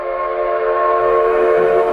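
A train whistle blows one long, loud, steady chord for the entire stretch, unbroken, with a faint low rumble of the train beneath it and no voices.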